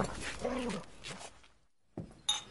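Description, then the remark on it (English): A dog whimpers softly with a couple of short, thin whines, followed by a brief pause and a few faint shuffling sounds. “Well, can't really with the dogs, but I suppose you could come for a drink at mine.”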